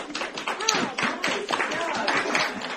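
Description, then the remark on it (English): A crowd of classmates and community members in Ketchikan applauds students performing their plays, with dense, continuous clapping and scattered cheers and excited voices rising over the noise, loud throughout the short burst. “They received a rowdy chorus of applause.”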